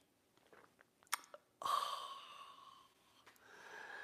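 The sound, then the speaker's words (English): A few soft clicks, then a sudden airy slurp of someone sipping coffee in a 'simultaneous sip', with a faint whistling tone that fades over about a second, followed by a quieter second breathy sip. “It's called the simultaneous sip, and you'll hear it around the world.”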